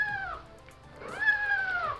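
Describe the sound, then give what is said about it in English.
A cat meows twice, clear: a short call, then a pause, then a longer, drawn-out meow that rises and slowly falls. No one speaks. “They checked all the major haunts that would entice a kitty cat, like the back of the fish store, the back of the yarn store, the front of the pet store where all the kittens are in the window.”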